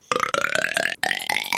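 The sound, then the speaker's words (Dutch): A loud, drawn-out burp held on a steady musical pitch, the note C, that creeps slightly upward, briefly cut off midway before resuming. No talking. “Ronde 1, intro's met boeren.”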